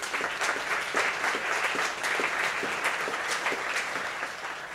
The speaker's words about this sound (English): You know, never have I heard an applause quite so muted as that on such a big announcement like that. It almost felt like people were going, okay. If you say so.